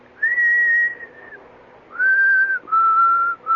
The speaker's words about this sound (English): No, that's just what I whistle. You asked me what I was whistling. That's not a real tune, I suppose. I always whistle that.